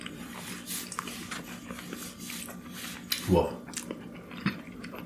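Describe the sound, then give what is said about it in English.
Someone eating coconut cream pie ice cream from a spoon: soft, wet chewing and mouth noises with light clicks, then a short hummed vocal sound midway, all quiet against a steady low background hum. “Let me get my first bite because it's already on my spoon.”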